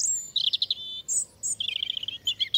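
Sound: european robin song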